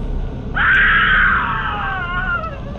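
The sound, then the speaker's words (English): A single long, high-pitched scream of a person in terror rises abruptly, holds for over a second, then slowly trails off with falling pitch over steady background noise, sounding somewhat distant. “Okay, either that's the worst song I've ever heard, or someone was screaming.”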